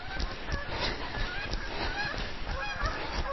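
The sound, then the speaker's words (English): A flock of geese honks continuously and loudly, their overlapping calls forming a dense, chaotic chorus with no pauses and no one speaking. “Oh, here come some geese.”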